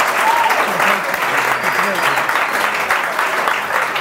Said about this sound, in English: Thanks everyone for being here. Let's clap it up for this wonderful segment.